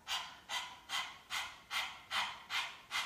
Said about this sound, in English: Actually, we have four tools, because now I want you to really listen to the sound of your breath. In the breathing, you should hear the mantra Hai.